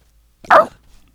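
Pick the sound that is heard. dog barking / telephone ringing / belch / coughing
dog barking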